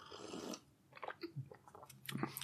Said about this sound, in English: So I like having a quick sip of tea before I start. This tea is called Revitalize.